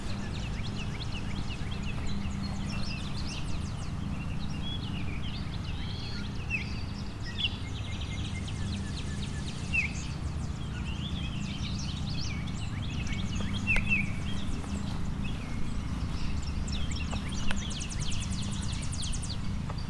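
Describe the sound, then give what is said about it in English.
A clay-colored sparrow gives flat, insect-like buzzy trills at intervals amid a busy chorus of other chirping birds, over a steady low outdoor rumble. “So I've got a clay-colored sparrow.”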